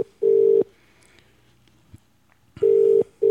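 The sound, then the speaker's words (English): A phone ringback tone heard down the line on an outgoing call to Great Britain: two steady buzzing rings about two seconds apart, each lasting under half a second, with quiet hiss between them and no talking. “give Danny a call and see what's going on. Well, here we go. At least it's ringing.”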